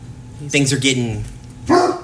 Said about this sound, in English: That was one of the dogs.